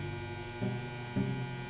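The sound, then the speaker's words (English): A clothes dryer with clothes inside hums steadily with a low, droning tone, swelling slightly in regular pulses every half second or so, as if the drum is turning. No voices are present. “And that's my dryer.”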